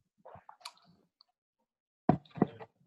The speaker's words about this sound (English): I'm gonna buy those toothpicks you sent me. The link for. Yeah. I'm chewing on one right now.